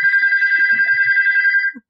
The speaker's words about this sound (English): Oh, there's my phone. That's okay.